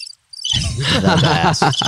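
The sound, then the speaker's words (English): A cricket chirping sound effect played for an awkward silence, a steady, shrill trill that starts after a brief gap and continues for about a second and a half, fairly loud and heard alone with no talking. “And we have the awkward silence.”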